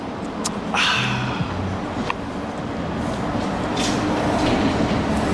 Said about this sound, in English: As another bus goes by, the 38 are taking folks to work. Everyone on that bus is happy they caught the rabbit today.